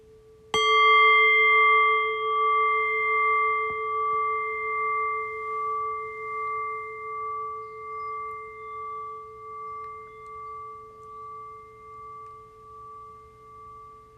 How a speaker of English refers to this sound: So in a few moments' time then, I'll ring the bell again. And the invitation here then is to once again rest awareness on the decay of the bell. Allow the fading bell to guide your awareness into silence.